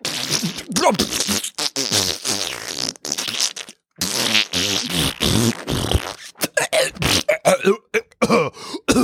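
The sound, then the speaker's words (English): A voice imitates farting with a long run of loud, sputtering raspberry noises, stretched and choppy bursts with brief pauses between them, and no actual words. “My asshole coughs.”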